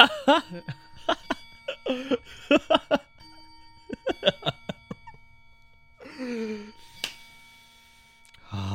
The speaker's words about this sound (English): The clock has finally stopped chiming.